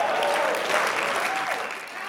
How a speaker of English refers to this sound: Come on, North Central, can somebody in the building make some noise for Jesus Christ this morning? If you love Jesus and you know it, can you just clap your hands a little bit? Lift your voice just a little bit.